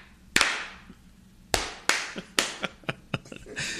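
A sharp, loud clap followed by a short patterned sequence of claps in an uneven rhythm, a group's own special clap, each crack ringing out briefly, with no talking over it.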